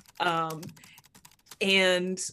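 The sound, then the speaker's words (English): Rapid clacking of an old 90s computer keyboard as a secretary types at a front desk, a quick run of sharp key clicks, bracketed by a sustained voiced hum at the start and end. “Francis, where like Francis is clacking away at her like 90s keyboard that is like filling the room with sound.”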